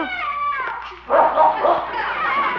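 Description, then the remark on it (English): A bloodhound, having found a neighbor's cat behind a garage, whines with a high, drawn-out tone, then breaks into a run of loud yelping barks in quick, uneven bursts. “I'll say he has a neighbor's cat, some bloodhound.”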